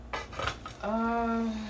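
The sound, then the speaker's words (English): Metal pans clatter and bang together in a quick jumble as someone searches for a particular pan, then one pan rings out with a sustained, steady metallic tone that slowly fades. “Oh, there you are. Okay. I found it. I found the pan I wanted to use.”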